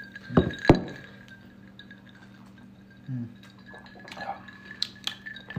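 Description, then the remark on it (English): Two bright glass clinks land close together near the start in a toast, leaving a faint ringing tone, followed by quiet, soft sipping of a peach twisted tea drink and small liquid sounds. “Cheers, bro.”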